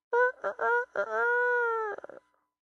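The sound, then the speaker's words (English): A rooster crows once, clear: a few choppy opening notes, then a long drawn-out held cry that breaks into a quick stuttering finish. “I mean, he did have a rooster right there, but I kind of figure off in the distance, in the Galilean countryside, there was some farmer who had a rooster.”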